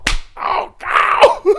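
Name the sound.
slap across the face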